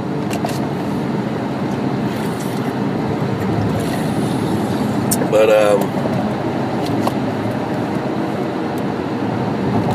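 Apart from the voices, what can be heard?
car driving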